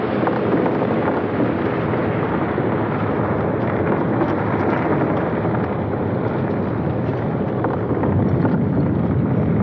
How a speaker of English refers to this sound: Look out! Come on, Sergeant, the whole cliff's coming down!